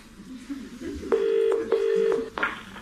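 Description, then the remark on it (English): A telephone ringing tone heard through a phone line while calling an electronics company's helpline, a steady electronic burr sounding in a few separated bursts, fairly loud and slightly tinny, over faint background noise. “Oh, it's ringing.”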